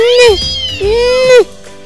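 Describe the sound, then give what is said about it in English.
Two muffled, closed-mouth mews from a cat whose mouth is stuck shut by sticky candy, the first short and the second longer with a rising then falling whine, loud, with a brief gap between them. “Kitty's mouth is stuck. She cannot open her mouth.”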